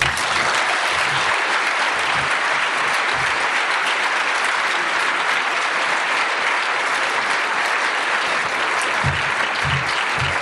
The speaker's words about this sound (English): Thank you so much, everyone, for coming tonight. And one more round of applause, please, for Nikky, Finney, and Lynn Hejinian.